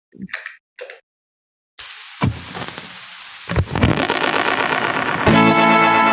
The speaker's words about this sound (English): See how when I'm playing, the delay and reverb are low, and as soon as I stop, they shoot up. So. Yeah, it sounds like they're getting closer to you.